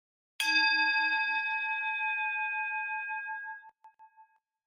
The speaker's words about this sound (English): Once again, you're simply going to try to hold awareness gently, softly, from the moment you hear this bell until you can no longer hear it.